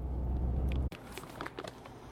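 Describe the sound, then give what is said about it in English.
A car engine drones with a low, steady rumble as the car drives off, then the sound cuts off abruptly, leaving quieter background noise with faint clicks and rustling. “You can probably hear me driving off now”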